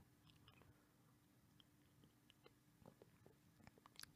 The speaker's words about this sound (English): But before that, let me take a sip of my coffee, black coffee with cinnamon.